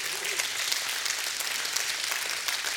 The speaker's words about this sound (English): Anybody else standing there? And if you're thankful, give him a hand clap of praise.